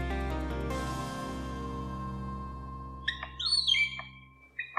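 A palm cockatoo calls with loud, whistling squawks and rising-falling shrieks, clustered near the end after a steady, humming stretch, with a few sharp knocks at the very beginning.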